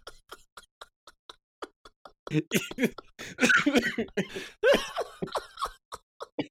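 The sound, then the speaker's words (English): A person breaks into a loud, harsh fit of repeated coughs, several rough bursts in a row, while a steady ticking continues softly in the background. “Yo, you really got me coughing.”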